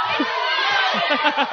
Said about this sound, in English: That's the crowd. They're riled up.